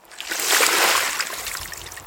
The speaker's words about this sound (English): Did you just pour out your bucket?